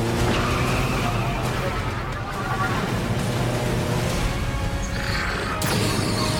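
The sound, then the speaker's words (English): A motorcycle engine roars loudly and steadily for several seconds as the motorcycle flies by, with screeching and mechanical clatter mixed into the dense, continuous noise of fast motion. “Bayonetta turns, sees John flying by on the motorcycle.”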